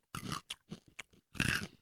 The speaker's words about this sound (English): Well, first of all, when you bite it, it's like chipping off a bit of gemstone into your mouth. It is. And it looks like amber. You barely bite and it chips the whole half of it down.